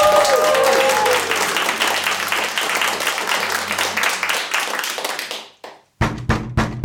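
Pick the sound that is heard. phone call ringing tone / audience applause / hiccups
audience applause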